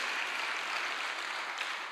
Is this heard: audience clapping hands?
yes